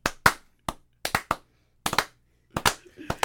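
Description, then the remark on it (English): Sharp hand claps come in short, uneven bursts of two or three, as a few people give a slow clap at a loose, slowish pace, fairly crisp. “I think we need a slow clap.”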